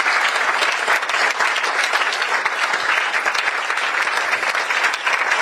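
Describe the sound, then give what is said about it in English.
Sustained, dense applause from a large audience on their feet giving a standing ovation for an initiative, a steady roar of many hands clapping at once with no pauses, loud and even throughout, with no voices standing out. “And let's give Mr. Mensah Bonsu a standing ovation and a round of applause for this fantastic initiative.”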